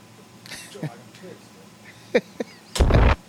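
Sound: bomb explosion sound effect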